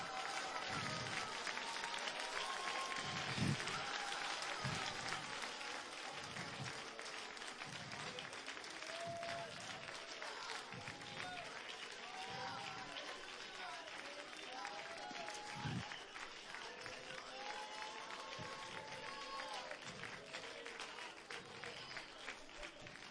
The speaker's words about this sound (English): There is an explosion of power in this place. Come on, clap your hands.